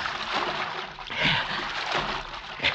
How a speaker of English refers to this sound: Gotta throw those dogs off the trail. He gotta wade the creek, even if it is full of cotton mouths.